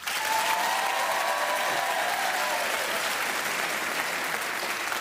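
A crowd applauds steadily for several seconds, a dense, continuous wash of clapping that stays loud throughout, with a few faint cheers mixed in and no one speaking.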